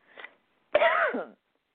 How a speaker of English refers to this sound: Sorry about my cough. I think I probably need a ton of water right now.